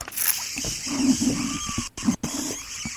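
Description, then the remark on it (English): A squeaky water bottle creaks and squeals steadily for a few seconds, with rubbery, low-pitched squeaks, a thin higher squeal midway, and two brief sharp breaks near the end. “That is, I possess the squeakiest water bottle known to man.”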